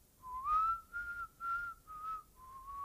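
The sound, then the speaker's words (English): A person whistles a short melodic TV theme song tune, several clear sustained notes in phrased bursts with brief pauses between them, moderately loud, with no talking. “Why are you whistling?”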